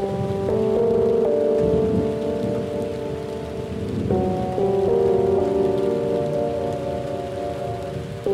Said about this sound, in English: The wind and the rain whipped my face as I walked alone in the dark.